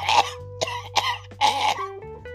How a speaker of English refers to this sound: Coughing like, barking like a dog.